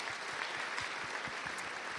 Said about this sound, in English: Fantastic. Well done, well done. Give them a round of applause as well.